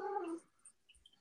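cat vocalizing

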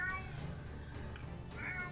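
cat meowing

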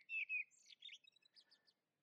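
birds chirping in trees

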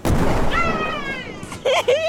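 cannon firing sound effect

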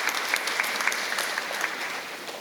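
audience clapping hands

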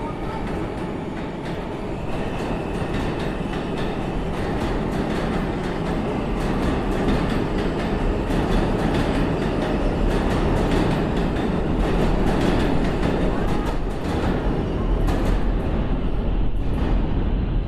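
train

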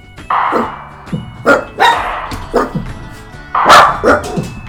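dogs barking

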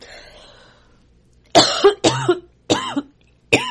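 cough

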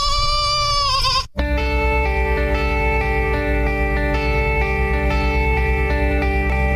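goat bleating

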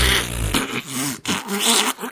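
fart sound effect

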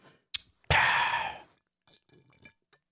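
drinking water

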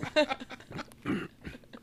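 dog vocalizing

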